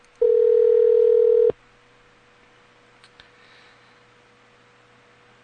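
An outgoing phone call from a radio show to a guest ringing: a steady electronic ringback tone sounds for about a second, falls silent for several seconds, then starts again at the very end. No one speaks.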